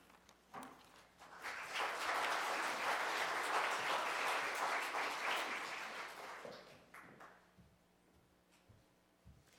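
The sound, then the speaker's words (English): A church audience applauds the students who led Sunday morning worship, rising quickly to a steady, dense patter of many hands for several seconds, then thinning out into scattered claps before fading to quiet. “Can we clap for them again?”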